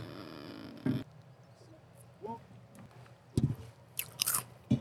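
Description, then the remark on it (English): Close-up chewing and biting right at the microphone: a few irregular, crunchy bursts with quieter wet mouth sounds between them, and no one talking. “She's hungry. She's coming for you. She's like, let me eat that.”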